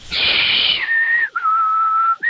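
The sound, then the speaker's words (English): A person whistles loudly, starting on a breathy higher note, then sliding down into long, steady lower tones broken by two brief pauses, with no talking. “Dear God, stop whistling.”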